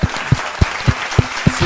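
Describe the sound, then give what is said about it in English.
An audience applauds, a dense wash of many hands clapping with a few louder, sharper claps rising out of it at a steady pace. No one speaks over it. “Let's give her a round of applause, you guys.”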